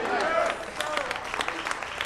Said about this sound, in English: Oh, the hand claps.